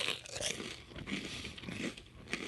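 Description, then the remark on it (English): Crunchy chewing of a day-old chicken finger from Mr. Wong's Chicken and Rice, reheated in a Ninja Dual Basket 8-quart air fryer, with a steady run of crisp, crackling bites and mouth noises repeating over a couple of seconds, fairly loud and with no talking over it. “Girl, what are you eating? A delicious chicken finger from Mr. Wong's Chicken and Rice.”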